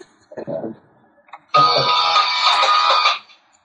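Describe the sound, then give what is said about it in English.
A wife's mobile phone rings with a loud, bright electronic ringtone that plays for about a second and a half, following a brief low murmur of a voice moments before. “Oh, that's my wife's phone.”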